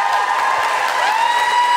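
A burst of audience applause, steady and fairly loud throughout, with a whistling, ringing tone drifting over the clapping.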